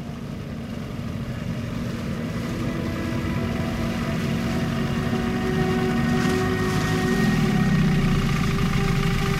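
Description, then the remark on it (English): A small wooden boat's engine hums steadily on a lake, a low rumbling drone, then its pitch sags and slows toward the end as the motor winds down when the boat reaches the middle of the lake. “The low hum of the engine slowly died down as my wooden boat made it to the middle of the lake.”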